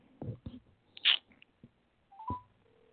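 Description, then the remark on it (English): A few soft taps and short electronic beeps from a phone keypad as a number is dialed to make a phone call, fairly quiet, with gaps between the tones and no talking. “Let me call this nigga on the behind the scenes.”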